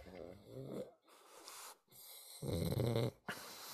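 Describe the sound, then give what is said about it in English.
A pig named Nacho snorts loudly in rough, rasping bursts, three harsh grunting snorts separated by short pauses, each with a buzzy, fluttering texture. “He is ripping snorts.”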